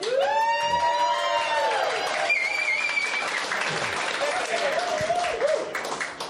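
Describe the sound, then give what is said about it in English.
A crowd at a live beer-tasting event bursts into steady applause mixed with cheering and whoops, with some high whistles and shouting voices rising over the continuous clapping throughout. “That's a bit more like it.”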